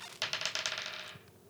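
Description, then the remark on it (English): Dice clatter across a hard tabletop in a quick burst of rattling clicks that slow and fade out after about a second, with no voices. “I'm just rolling a dice.”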